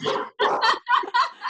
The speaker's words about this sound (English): I actually, sorry, we have dogs.